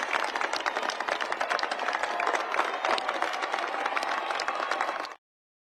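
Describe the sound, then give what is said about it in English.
At a graduation ceremony, graduates stand and applaud their families, dense overlapping claps forming a continuous loud roar for about five seconds before cutting off abruptly. “Stand up and give them a round of applause.”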